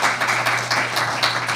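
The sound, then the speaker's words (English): The audience at the Story Connect Communications Workshop in Newport, Oregon, applauds steadily, a dense wash of many hands clapping at once, fairly loud and continuous with no voices standing out. “We are here, as you may have noticed by the applause, in front of the audience at the Story Connect Communications Workshop.”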